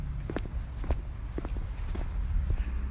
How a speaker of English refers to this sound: Yes, you can hear my footsteps.